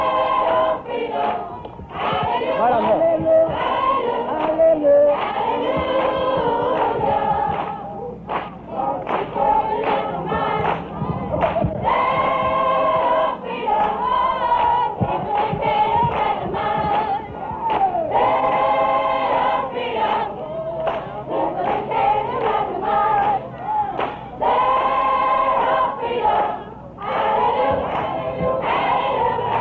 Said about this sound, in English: Several hundred Negro demonstrators and a few whites marched on the county courthouse. They arrived, sitting on the steps, clapping, singing.